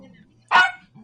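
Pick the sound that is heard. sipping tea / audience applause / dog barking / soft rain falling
dog barking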